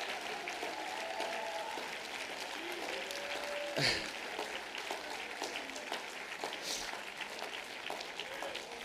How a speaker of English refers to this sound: Would you clap your hands and thank God?